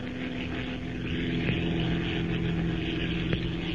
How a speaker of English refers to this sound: With its twin motors purring in an even, steady rhythm, the gray transport plane slips through the cloudless night sky like some giant bird, leaving the rolling deserts of Arabia behind it and pointing its blunt nose toward Egypt.